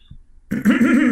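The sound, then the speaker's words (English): After a brief quiet moment, someone loudly clears their throat with a harsh, voiced rasp that lasts about half a second, imitating their mother's throat clearing. “You know, the thing I hate the most about having to clear my throat so much is that I try it once, I'll just do it once and it won't go away still.”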